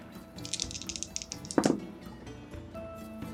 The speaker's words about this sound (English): And you know what? Let's just keep on rolling dice.